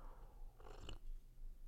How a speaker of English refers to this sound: Taking a sip of chamomile tea.